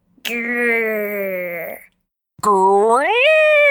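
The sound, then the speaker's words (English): A voice imitates a wolf growl in two drawn-out, groaning bursts separated by a short pause, the second rising in pitch. Loud, with no other sounds around it. “Wolves don't say meow. Wolves growl. Like this.”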